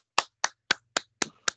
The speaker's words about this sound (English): News. My Dolphins. Let me get my good claps in.